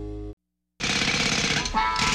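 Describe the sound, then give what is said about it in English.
A jackhammer pounds loudly in a rapid, continuous rattle, starting after a brief low tone and a moment of silence. “Jackhammers, saws, pliers.”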